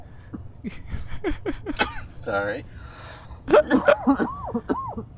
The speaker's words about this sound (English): Now was that just a choking cough explosion, or was that an extracurricular coughing explosion?